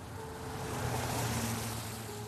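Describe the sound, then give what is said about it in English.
A car whizzes by, its rushing whoosh and low engine hum swelling to a peak mid-clip before easing off. No one speaks. “All of a sudden, you hear a car just whiz right by.”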